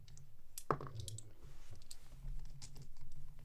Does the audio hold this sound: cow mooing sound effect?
no